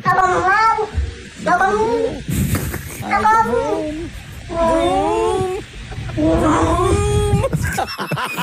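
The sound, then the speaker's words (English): A cat lets out about six loud, drawn-out meows in quick succession in a talking-cat video, each with a wavering, almost speech-like rise and fall in pitch, separated by brief pauses. “So there's a cat, another one of those cat talking videos.”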